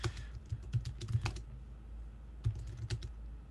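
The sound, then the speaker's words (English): Quick bursts of computer keyboard typing as a discussion question is typed into a chat: a flurry of clicky keystrokes, a brief pause, then a few more taps, fairly quiet with no voices. “I'm typing that into the chat right now.”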